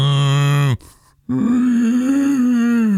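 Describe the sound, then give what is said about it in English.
An older female dog's loud, raspy snore-like breathing while she is awake and standing, two drawn-out groaning pulls separated by a brief pause, with no talking over it. “And she's also snoring when she's awake. Like she's right now just standing here going.”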